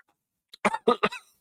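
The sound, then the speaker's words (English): A rapid series of harsh coughs, three strong bursts in quick succession after a short catch of breath, with another starting at the end; no one speaks. “That break in that pause was because … was coughing”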